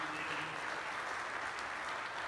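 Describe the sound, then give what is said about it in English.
An audience applauds for Katrina, an absent office staff member, in a dense, steady wash of clapping that holds at an even, fairly loud level for a couple of seconds, with no voices heard over it. “So even though she's not here, give a round of applause for Katrina.”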